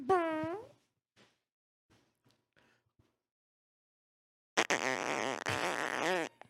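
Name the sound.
imitated fart sound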